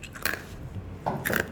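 Crunching from someone chewing food, with two distinct crisp bursts about a second apart and soft mouth sounds between them, no talking.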